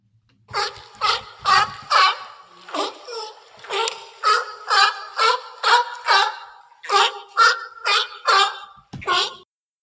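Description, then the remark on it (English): Pinnipeds bark over and over at a haul-out, a loud run of hoarse, honking calls in a steady rhythm, with a faint watery wash underneath and no talking. “So here, let me play for you really quick just the general sound that Chris and I are trying to achieve.”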